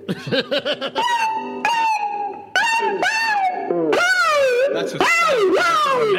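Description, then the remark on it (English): An electric guitar mimics cat meows: a few quick plucked notes, then long wailing bends that slide up and down in pitch, loud and whining like yowling kitty cries. “Do you want to hear my little kitty sounds on my guitar?”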